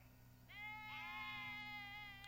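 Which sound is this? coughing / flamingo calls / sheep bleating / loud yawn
sheep bleating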